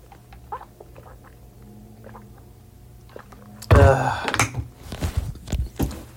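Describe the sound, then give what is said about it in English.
Someone chews the last of their Amazon multivitamin gummies: faint sticky clicks at first, then a sudden loud burst followed by a run of irregular, wet chewing and mouth noises, with no talking. “I finally finished the last gummy from my Amazon multivitamin gummies.”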